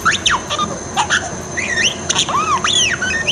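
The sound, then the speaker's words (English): A parakeet rapidly chirps and whistles in bright, swooping electronic-sounding beeps and warbles that imitate the droid R2-D2 from Star Wars, fairly loud, with no talking. “It's a parakeet. A parakeet? That sounds exactly like R2-D2.”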